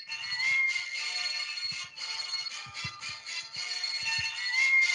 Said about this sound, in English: Oh, we're bringing this back. The phone speaker to the microphone.